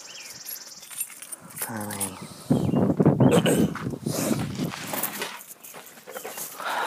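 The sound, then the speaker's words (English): A bunch of car keys jingles and rattles in repeated bursts for several seconds, with a brief voice sounding partway through. “Car keys.”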